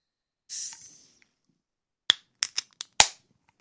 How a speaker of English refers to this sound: Grab a beer. I got a tall boy Tecate. Let's crack this open and see what it's all about.